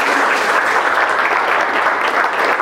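A room full of people clapping steadily for a business owner being introduced, a dense, sustained patter of applause at even loudness for a few seconds with no voices standing out.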